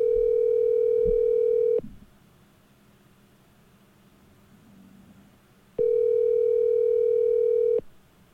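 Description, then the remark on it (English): A telephone ringback tone on a call to a man's father sounds twice, each steady electronic buzz lasting about two seconds with a long silent gap between, and the call goes unanswered. No one speaks. “I just called Dad for Deer Meathead. Nobody's picking up.”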